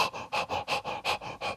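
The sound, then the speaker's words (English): A person imitates a dog panting: quick, breathy huffs in a steady rhythm, about seven in a second and a half, fairly loud with no speech. “Or a fucking dog for that matter. How do you do that? That motherfucker's back there panting.”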